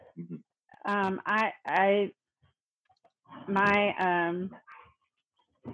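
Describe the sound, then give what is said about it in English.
Dogs let out loud, drawn-out whining yelps in two clusters of three or four cries each, separated by a brief pause, with no one talking. “sorry, again with the dogs”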